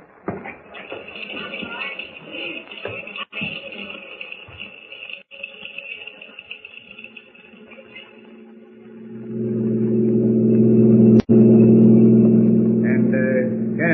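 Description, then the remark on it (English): Shuffling and rustling noises give way to a car engine that swells into a steady, loud rumble as the vehicle pulls away and drives on, with a brief click partway through. “We'll take my car.”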